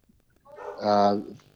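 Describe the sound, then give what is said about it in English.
A single drawn-out dog bark, loud, rising and fading over about a second with no talking around it. “Yes, we've got a dog.”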